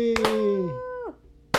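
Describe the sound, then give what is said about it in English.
A sharp single hand clap, made to sync three microphones, cracks out over a drawn-out cheerful voice that slides down in pitch and fades, then another crisp clap snaps at the very end. “All right, so I'm going to clap here because we have a third microphone today.”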